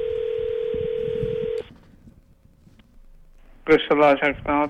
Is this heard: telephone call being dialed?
yes